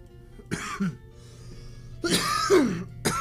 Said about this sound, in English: It's a weird time to be coughing in this day and age, ain't that right, fellas?